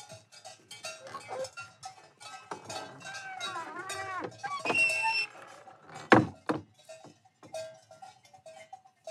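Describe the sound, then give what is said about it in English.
Cowbells clank and jangle irregularly from several cows grazing in an alpine meadow with snow-capped mountains in Germany. It is a continuous metallic clatter with a few louder knocks and occasional animal sounds in an open outdoor setting. “So snow-capped mountains, cows with bells, meadow flowers.”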